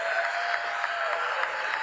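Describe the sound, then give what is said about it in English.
A crowd in Philadelphia claps steadily, a dense, even wash of many hands with no voices standing out, holding at a moderate level for the whole stretch. “how much are these people getting paid to clap?”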